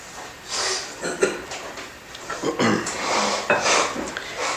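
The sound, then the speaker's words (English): Conscious breathing for chanting: a series of slow, deliberate breaths, airy and hissing, with several inhales and exhales in an uneven rhythm and some nasal, snort-like bursts. No one speaks. “Okay, so that's the breathing.”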